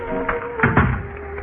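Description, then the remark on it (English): A door is shut with a soft thud, followed by a couple of quick metallic clicks as it is locked, over a low steady background hum. “And I locked the door behind me.”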